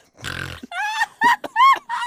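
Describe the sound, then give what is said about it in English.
A person imitates a pig, starting with a rough, low grunt followed by several squealing, oinking bursts in quick succession, loud. “And then you made a pig noise.”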